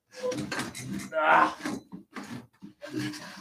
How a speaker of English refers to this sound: I got a guest chair here that normally we like to push back. Let me push this back. It looks very unprofessional.